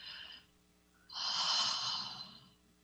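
A short breathy puff, then a longer, louder airy exhale through the mouth lasting over a second, clear with no talking; a deep, full breath released during a guided relaxation breathing exercise.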